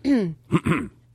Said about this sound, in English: that cough, you sound like a guy when you cough.